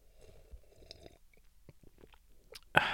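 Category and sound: food or drink, sipping wine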